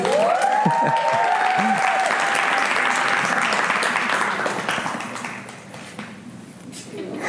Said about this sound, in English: Can we cheer them on a little bit?